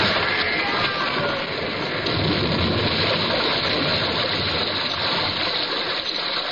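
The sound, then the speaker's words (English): Water pours and rushes through a breach in a ship's starboard bow, struck by a whale, in a heavy, continuous torrent, loud, with a steady churning roar that never lets up and no voices present. “Through the breach, they heard the waters pour as mountain torrents down a flume.”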